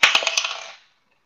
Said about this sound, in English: Right. The dice has come up.